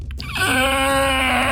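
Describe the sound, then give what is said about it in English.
A person voices the scream of a mound of flesh being burned with fire: after a brief breathy onset, a strained, wailing vocal cry holds steady at a fairly high pitch for over a second, rich with harmonics and bleat-like. “Lets out this like scream as you burn it with fire.”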